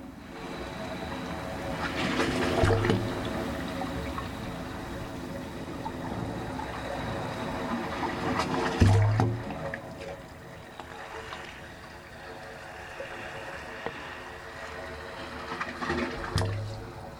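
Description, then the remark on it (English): The wave organ, an acoustic sculpture on a peninsula in San Francisco Bay, hums through its 25 pipes with low, hollow, sustained tones as waves roll ashore and seawater sloshes through them, swelling into louder gurgling surges roughly every seven seconds amid a steady wash of water. “As the waves roll ashore, the organ's 25 pipes create these musical tones.”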